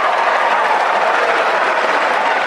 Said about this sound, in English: So, that is raucous applause.